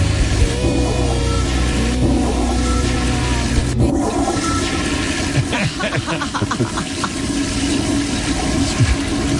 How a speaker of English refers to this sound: Imagine during the show you hear toilets flushing.